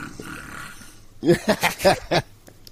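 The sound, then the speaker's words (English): A female puppy sitting in a bed lets out a quick run of five short, low, rough grunts, each a brief throaty burst, after a second or so of faint background hum. “Yeah, is there a making just little puppy boring noises?”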